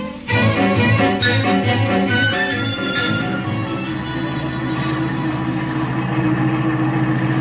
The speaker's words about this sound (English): Yeah, this must be the place. I'll pull in behind their car.